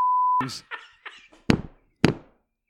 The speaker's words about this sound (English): I'm going to beep that. I'm sorry. I'm going to beep that.